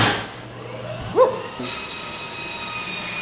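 A bandsaw starts up with a brief rising whine, then settles into a steady, high-pitched metallic hum that carries on to the end, with no one talking.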